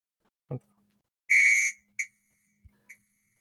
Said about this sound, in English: Can I use the whistle sound effect now? Yes, you can do the whistle.